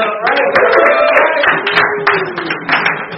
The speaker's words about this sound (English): This is where we clap.